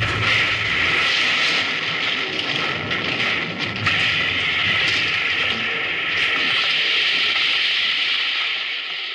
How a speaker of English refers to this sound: Come on, that train's right on top of us.